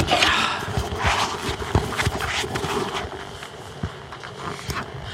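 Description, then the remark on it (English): Footsteps of someone approaching tap and knock in an uneven, steady series of sharp hard steps, fairly loud over a constant hiss, with no voices. “I hear someone coming.”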